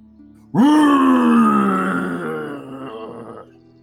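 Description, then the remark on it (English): A person voices a loud, primal monster roar heard as a door is pushed open, bursting in suddenly, holding as one long, raspy, growling bellow for about three seconds, slowly sinking in pitch, then cutting off. “And the loudest and most primal roar that any of you have ever heard in your life emits as soon as you open the door.”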